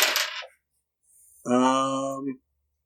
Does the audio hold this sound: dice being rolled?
yes